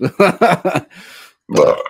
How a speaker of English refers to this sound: There's a burp.